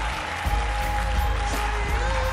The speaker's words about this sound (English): Come on, give a big clap offering to Jesus and praise him.